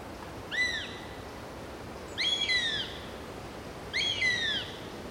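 A buzzard gives three drawn-out, downward-slurring mewing calls, evenly spaced about two seconds apart, clear over a steady low background hiss.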